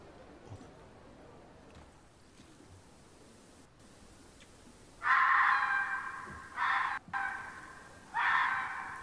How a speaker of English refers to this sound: Sorry, I have, so the stream just heard, I googled, fox sounds, and it's just a fox screaming.